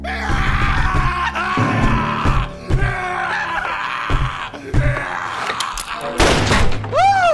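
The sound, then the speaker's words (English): Heavy, muffled thuds land against a thick, solid door several times in irregular succession, mixed with shouting and groaning voices over dramatic background music. “Stand back, you two! Darn! That door is too thick.”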